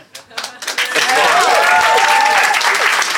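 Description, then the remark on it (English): A few scattered claps swell within a second into loud, sustained applause from a crowd, with cheering and whooping voices mixed into the dense clapping. “So what are you clapping?”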